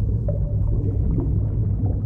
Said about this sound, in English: Chamber rumbles for a sec. Everyone kind of leans, like some papers roll off and some pencils roll off. And it definitely feels like the wailing cry of Seto. You can feel him in this rumble. And then it dies down.